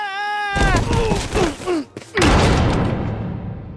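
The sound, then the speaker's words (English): A loud crash as a body, overshooting a landing platform, slams into a door, followed by a second heavy bang and rattling clatter that trails off, after a brief high tone at the start. “Like, he overshoots the landing platform and bangs into the door.”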